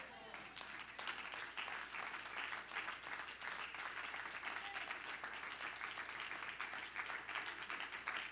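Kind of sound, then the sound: crowd, audience clapping hands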